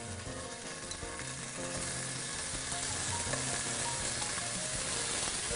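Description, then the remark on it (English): Two chicken apple sausages, cut in half and placed cut side down, sear and caramelize in a hot pan with a steady, dense sizzle and crackle, a continuous bright hiss with scattered pops that swells slightly after the first couple of seconds. No one speaks. “I'm gonna put it cut side down. This is gonna allow the sausage to caramelize.”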